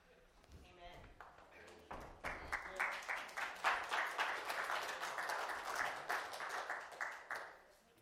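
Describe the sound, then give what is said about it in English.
An audience in a Baptist church claps for the worship team after their singing, starting with a few hesitant, scattered claps that swell into steady, fairly loud applause for several seconds before tapering off at the end. “Those claps, those nervous claps at the beginning, that's not because they weren't sure if they love you, team.”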